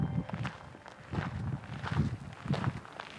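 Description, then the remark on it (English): Steady footsteps crunch along a park trail as someone hikes toward Bumpass Hell, an area known for bubbling mud pots and steaming vents, each step a soft gritty thud in an even walking rhythm, about four or five strides with no voices. “taking a hike in the park.”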